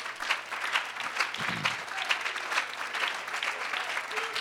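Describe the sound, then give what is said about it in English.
A church audience claps steadily in praise of the Lord, dense applause from many hands at once, with a faint voice briefly rising beneath the clapping. “Give the Lord a real good hand and clap of praise.”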